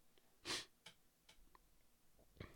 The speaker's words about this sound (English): And I will apologize if I'm sniffling and I'm sounding weird, but my sinuses are all of a sudden deciding to empty out.